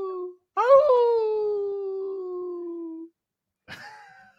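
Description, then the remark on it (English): A person imitates a wolf howl: a long, loud, sustained vocal tone that swoops up, then slowly sinks over a few seconds, followed by a brief second howl-like yelp. “You just have to howl like a wolf.”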